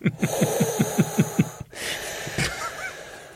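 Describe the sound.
A person makes heavy, rapid breathing noises in a quick, even rhythm, imitating a firefighter's breathing apparatus, about eight puffs followed by a breathy, hissing exhale.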